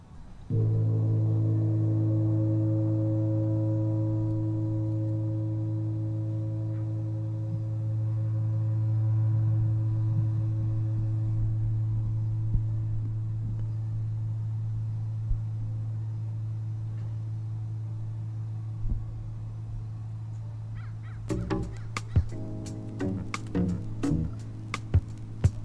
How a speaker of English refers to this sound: So here we go. This is going to be our first Park Day gong sound. Make it special. Put it in your heart, in your mind.